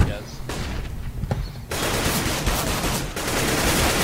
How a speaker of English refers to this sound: So, lots of gunfire. That's not the SWAT team. That's the game.